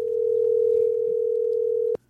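telephone dial tone

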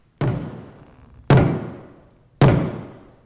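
hammering

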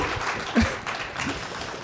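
audience applause

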